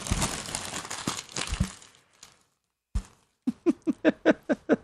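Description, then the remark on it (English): Paper crinkles and crackles as it's crumpled up to be thrown in the trash. After a short pause, a sharp crunch is followed by a quick series of rhythmic crumpling bursts. No one speaks. “Crumbling up some paper?”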